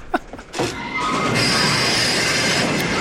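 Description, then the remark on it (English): A loud train emergency brake screeches, starting after a brief rattle and holding a harsh, steady metallic squeal over rumbling wheel noise to the end, with no voices. “That's the break? Oh, the emergency, baby.”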